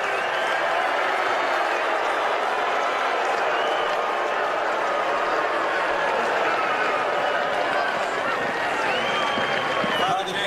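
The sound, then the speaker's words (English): A large crowd fills the whole stretch with a dense, steady roar, and scattered booing rises within the mass of voices, mingled with some clapping and chatter, as people boo kids walking out before Vice President Pence speaks. “And as they were walking out, a pretty substantial number, some of the people decided they were going to boo the little babies. If you listen closely, you can hear the booing.”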